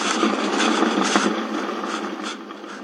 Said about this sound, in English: I'm going to let you hear what it sounds like when it boils, under when it's under pressure. This is, you can actually hear it start to cook. I will put the recorder right down by the cooker here.